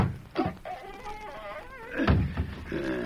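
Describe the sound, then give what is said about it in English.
A heavy wooden trap door creaks open with a long, wavering squeal of hinges, framed by a dull thud at the start and a louder thump near the end. “Well, here's the trap door. Good, open it up.”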